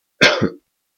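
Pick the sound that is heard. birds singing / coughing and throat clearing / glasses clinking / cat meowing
coughing and throat clearing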